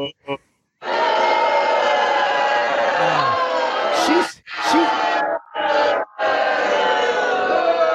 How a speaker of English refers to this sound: Babe, just so you know, the live studio audience is booing you right now.